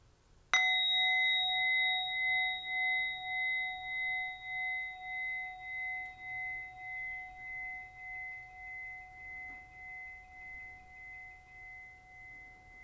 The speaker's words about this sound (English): And as we complete our meditation, I invite you to take 3 deep, full breaths with the sound of the bell.